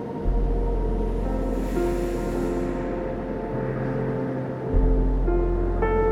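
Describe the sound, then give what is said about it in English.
A steady wash of ocean surf rumbles low and continuous, swelling slightly at the start and again near the end, blended with soft sustained ambient tones and no voices. “Breathe now and find the calming rhythm of the waves.”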